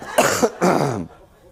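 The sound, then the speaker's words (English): Two loud, deliberate coughs made as a joke, in quick succession, each a harsh burst, the second slightly longer, followed by quiet. “I'm going to start coughing now because I think it's funny, you know.”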